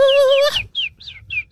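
A bird chirps loudly: one sustained whistled note, then four quick, high, downward-sliding chirps in a steady rhythm. No one speaks.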